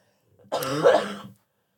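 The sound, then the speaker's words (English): A single rough, drawn-out cough, raspy and throaty like clearing the throat, lasting under a second with silence around it. “About my gnarly cough. That's all I right. know that's a killer on the microphone.”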